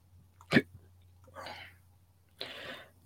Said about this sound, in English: And excuse me. It hiccups.